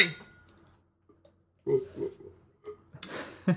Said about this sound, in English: Let's cheers first. All right. Let's cheers, put back our beers